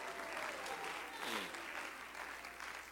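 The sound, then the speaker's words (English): An audience claps hands steadily for the full three seconds, a dense, even wash of applause, with a voice briefly rising above it partway through. “Oh, my Lord, clap your hands, raise your hand.”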